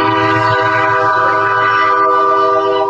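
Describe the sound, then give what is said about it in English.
A loud, sustained train horn sound effect, used to mute swearing, blares with steady harmonic tones for the full three seconds, backed by low rumbling rail noise, with no speech audible. “Is this like your house that you're at right now with that train?”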